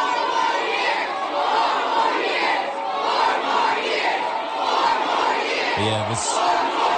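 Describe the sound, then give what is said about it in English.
Competing protest groups at President Biden's abortion rights campaign event in Virginia shout and yell over one another, some trying to drown out pro-Palestinian protesters screaming genocide, in a continuous, loud roar of overlapping voices, rising and falling in waves, with a brief sharper burst near the end. “Competing groups screaming.”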